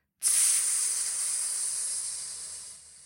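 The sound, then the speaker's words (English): A voice imitates a cobra's hiss, a long, sharp, steady bright 'tsss' that starts abruptly, holds for nearly three seconds and slowly tapers off. “"Tsss," said Cobra.”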